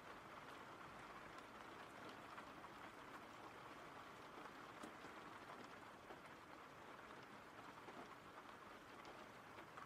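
rain falling outside

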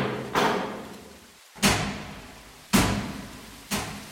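heavy vault door opening

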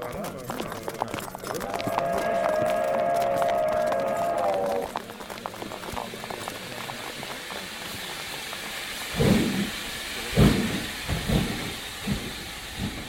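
steam train departing

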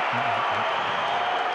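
basketball arena crowd cheering

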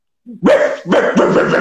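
dog barking

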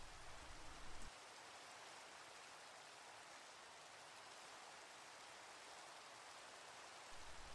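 rain

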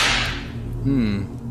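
whip crack

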